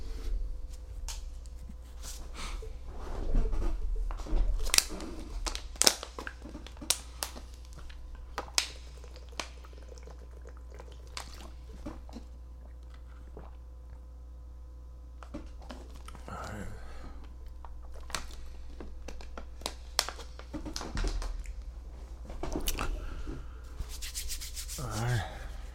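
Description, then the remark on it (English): Quiet handling of a water bottle during a water break: scattered rustles, rubs and plastic clicks with a few soft sips of water, over a steady low hum and no talking. “Going to take another water break”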